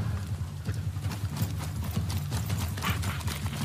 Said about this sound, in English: Freaking Nazgul over there riding some horses sucking into the mummy.